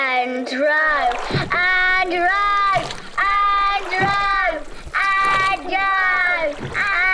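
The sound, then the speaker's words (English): Oars dip and splash in a steady rowing rhythm as a canoe is paddled on a river, several strokes about a second apart, fairly loud, while sustained voices carry on over the strokes. “And row. Oh, that's better. We'll be at the source of the river in no time.”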